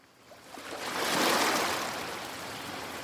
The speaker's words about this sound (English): It's an island, so you have to take a little boat, and it's 5 miles of sand and Atlantic breakers crashing. Initially, the beach is very crowded, but the further you walk, the more desolate it becomes.